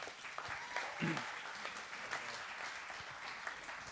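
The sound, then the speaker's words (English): Steady audience applause, a dense wash of clapping hands that stays fairly even throughout, with a few faint voices mixed in underneath. “You can give them one more round of applause.”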